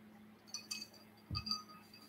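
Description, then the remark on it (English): A shelf that sits underneath a printer breaking: a few light, glassy clinks followed by a single dull low thud and some rattling, all faint over a steady low hum, with no one talking. “I just broke this shelf to the right, the one that sits underneath my printer.”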